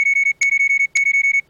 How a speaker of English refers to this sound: A persistent beeping had started from the speakers of my suit.